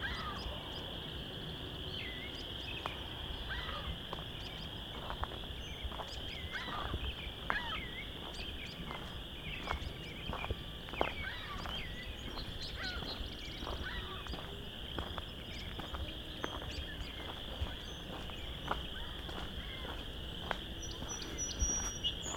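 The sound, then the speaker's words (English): A dense chorus of chorus frogs gives off steady, rapid creaking trills that fill the background, while a ring-billed gull calls now and then over them, at Vine Mount Marsh late in the day, about half an hour before sunset, under an overcast sky. No one speaks. “We've got a lot of chorus frogs. Also, ring-billed gull.”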